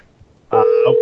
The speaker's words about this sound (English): Oh, my phone's ringing. I hear it.